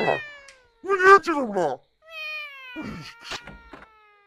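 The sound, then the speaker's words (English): Several cats yowl and meow in loud, drawn-out, wavering cries, overlapping at times in an agitated caterwauling exchange with short pauses between outbursts. “Look at the cats, bro. Cats is going at it.”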